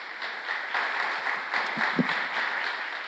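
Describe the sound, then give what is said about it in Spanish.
Steady applause from an audience, a dense wash of many hands clapping at an even level throughout, with a faint voice briefly audible beneath it. “Yo quiero que le den un fuerte aplauso a esta mujer que está a mi lado.”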